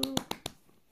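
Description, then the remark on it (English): Four quick, sharp hand claps in an even rhythm, crisp, followed by a short fading tail of quiet background sound. No voices. “Insert laugh, clap trap. You know, clap.”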